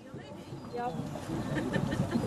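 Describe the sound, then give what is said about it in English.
A rigid inflatable boat (RIB) knocking and shifting at the water's edge as the skipper casts off the rope before the engines rev up, steady watery bustle with people talking in the background. “I've just stepped aboard what's called a rib, a rigid inflatable boat, and there's a palpable sense of anticipation.”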